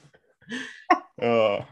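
A single sneeze: a short breathy buildup, a sharp explosive burst, then a brief voiced, tonal tail as the sneeze trails off, fairly loud with no speech over it.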